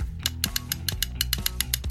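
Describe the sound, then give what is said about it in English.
A ratcheting mechanism clicks through a quick, fairly steady series of about a dozen sharp metallic ticks, over a low rumbling hum, with no voices, as a tension wrench is held in place while a pulley wheel is set. “hold this tension wrench in place while I set the pulley wheel.”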